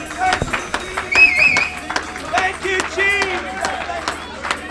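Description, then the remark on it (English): A church audience claps hands in praise of the Lord in an uneven, steady patter of sharp smacks throughout, with voices calling out and speaking over the applause. “Let's clap our hands and magnify the Lord.”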